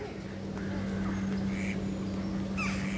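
A few scattered duck quacks at a duck pond, short nasal calls spaced irregularly over a steady low hum, with no one speaking.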